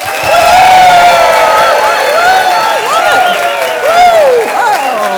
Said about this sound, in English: Now, if you really like music, show me how you'd clap for that.